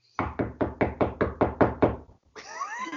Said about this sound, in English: That's emphatic knocking. Was that knocking?